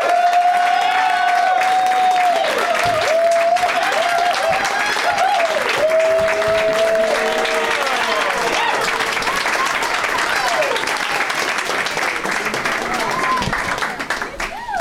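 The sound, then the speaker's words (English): A studio crowd gives a standing ovation welcoming guests onto a show, clapping and cheering in a steady, loud ovation for the full fifteen seconds, with sharp whistles rising and falling over the dense roar of hands. “Is that a real standing ovation?”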